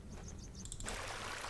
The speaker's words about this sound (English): Back at the babbling brook